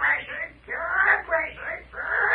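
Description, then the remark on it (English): A parrot named Belshazzar squawks loudly in four harsh, wavering bursts, one after another with brief dips between them, shrill and raspy with no speech alongside. “Now, what about that parrot we keep hearing?”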